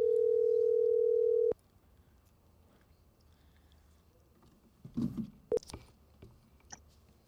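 A phone line's ringing tone during an outgoing call sounds once as a loud, steady hum for about a second and a half. It then cuts off into quiet background noise with a few brief knocks and clatters.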